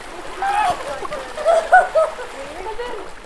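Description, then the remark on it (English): Women swimmers splash into cold open sea water at the 40 Foot in the evening amid steady wash and lapping, while voices call and shriek faintly over the waves. “The women make their way down the rough steps and the ladder into the cold water.”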